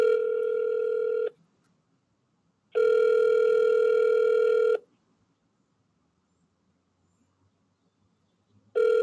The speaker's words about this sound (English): Ain't nobody picking up the damn phone right now. Fuck it.